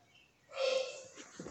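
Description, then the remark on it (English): A single sneeze bursts out sharply with a brief voiced, nasal edge, then fades into a couple of faint breathy sniffs. “Bless you, mommy.”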